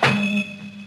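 A door slams shut once with a sharp, heavy thunk, followed by a low resonant hum that rings on briefly before fading. No voices.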